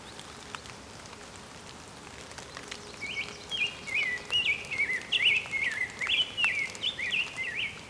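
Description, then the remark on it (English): Calls of a couple of American goldfinches: a string of bright, high, twittering notes that starts about three seconds in and runs on in quick bursts, heard over a steady pattering of rain. “Goldfinch here as well, American goldfinch, a couple of them.”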